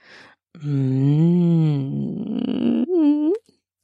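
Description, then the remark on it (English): A low human growl, drawn out for about three seconds, voiced and steady before it roughens, then ends in a short, higher-pitched rising moan. A faint breath comes just before it. “He makes his cock twitch again, and I let out a low growl.”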